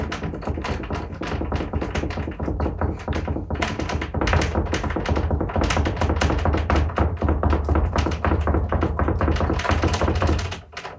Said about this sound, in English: Then the doorknob started turning, but it wouldn't open because the door was locked. The knocking and doorknob rattling went on for what felt like forever.